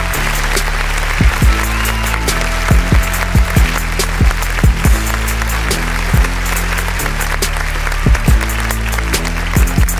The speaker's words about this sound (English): Let's get a round of applause, please. Yes, yes, yes.